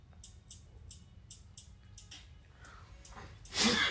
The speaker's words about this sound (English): Damn sneeze.